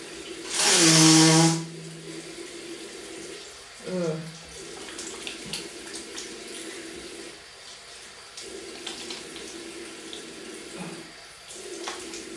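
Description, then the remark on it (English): A tap runs steadily for the whole stretch as water is run before washing a face, with a brief loud burst of noise near the start and a few soft splashes and knocks over the flow. “Right, let's get with this hydrating, moisturizing facial wash. Save some water.”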